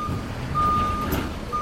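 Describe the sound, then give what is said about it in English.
A large truck coming in at night, its engine rumbling low while a steady, high reversing beep sounds in long intermittent tones over the idling noise, as people take out pieces of equipment. “They had noticed a truck coming in at night and people taking out pieces of equipment.”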